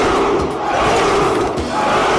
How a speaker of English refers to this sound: Let's give them all a Spartan cheer.